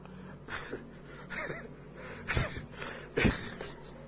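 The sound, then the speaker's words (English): A man's voice imitates heavy panting, with a series of loud, breathy gasps repeating at an uneven rhythm, with no speech. “He's lying down his back, panting, and to her, he has not done anything.”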